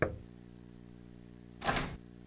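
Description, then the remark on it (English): A few soft, hesitant knocks on a front door early on a Saturday, made by a girl who has pulled her wagon up the front walk: one at the very start, then a short cluster of quick raps a moment later, with quiet pauses between and no voices. “the neighbors all heard the rumble and squeak of Jenny's wagon on the front walk, followed by her timid knocking at the door”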